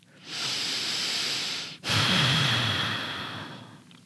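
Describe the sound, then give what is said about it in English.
Two long, slow yogic ocean breaths drawn through the mouth and a constricted throat, an inhale then an exhale, each a steady, airy hiss with a soft rasp, separated by a brief pause, no talking. “And that breath is an ocean breath because it sounds like those waves crashing against the ocean.”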